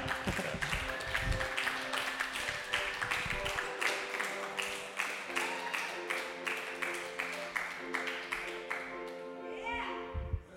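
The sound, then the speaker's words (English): An audience at a comedy show claps in a steady, rhythmic beat, sharp crisp slaps repeating about three times a second, over a sustained musical tone and a low murmur of voices, as a comic is introduced. “Hey, buckle your seatbelts and start clapping.”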